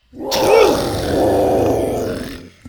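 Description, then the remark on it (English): A dinosaur named Buck lets out one long, loud roar at a velociraptor, rough and rumbling, swelling quickly and holding for about two seconds before cutting off, with no other sounds around it. “One of them, a mean-looking velociraptor, snapped at Buck, and Buck roared at it.”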